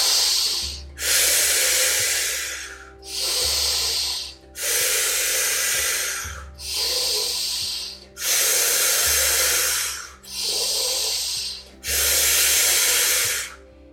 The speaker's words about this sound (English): feeling as your entire body begins to activate, feeling the nervous system begin to upregulate, feeling that full body aliveness, breathing in and breathing out. We'll be here for about 20 more rounds of the breath.